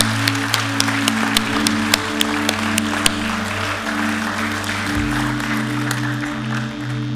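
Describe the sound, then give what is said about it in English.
A church audience applauds steadily to celebrate those who just made a decision to follow Jesus, the crowd's clapping forming a dense patter with sharper claps standing out, over a sustained low musical drone that shifts pitch partway through. “Church, can we celebrate with all those that just made that decision?”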